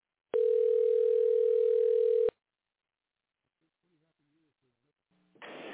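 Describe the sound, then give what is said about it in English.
A loud, steady telephone tone hums for about two seconds as a number is dialed and cuts off abruptly, followed by near silence with faint murmuring and then a burst of hissy noise. “Or no, I dialed the wrong number. Oh, darn it. There we go. All right. Try this one.”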